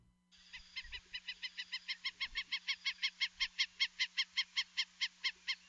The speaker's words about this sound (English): The Ayo, or Hawaiian stilt, is an endangered water bird found only in the Hawaiian Islands. They stand about 16 inches tall, have glossy black backs, bright white fronts, and as their name suggests, really long pink legs